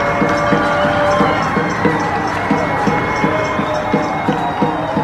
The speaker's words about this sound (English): People in Silver Lake just screaming, banging their pots and pans, just trying to show love and cheer up the neighborhood.